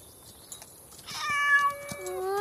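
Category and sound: animal, cat meowing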